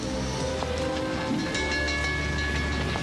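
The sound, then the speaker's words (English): A train, a recreation of the Orient Express, rolls steadily along the rails, a continuous low rumble with faint metallic whines and rattles layered on top, moderately loud throughout, with no voices. “Your train awaits, my lady.”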